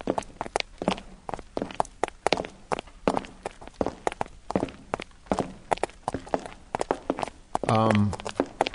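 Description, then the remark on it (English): Steady footsteps as a condemned man and a padre walk the last mile to the electric chair, in an even, unhurried rhythm, each step a sharp scuffing tap, with a brief voice sounding near the end. “Then let's go down the last mile.”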